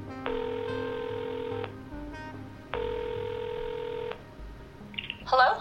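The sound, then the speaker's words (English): A returned phone call rings out on the line: two long, steady electronic rings separated by a short pause, followed by a faint click as the call connects. No one speaks. “So I called him back, hoping for some good news.”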